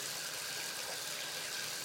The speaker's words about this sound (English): The bath tap turns and the water comes out of the tap and runs into the bath.